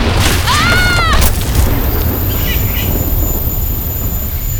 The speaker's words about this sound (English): Okay, that was definitely thunder. Holy shit. Was that lightning?